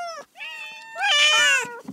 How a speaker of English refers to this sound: Hear that? That's the sound of 12 cats competing for my love and attention. Isn't that right, my little darlings?